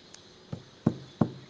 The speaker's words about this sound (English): When I reached the front door, it was closed. I knocked, knock, knock, knock.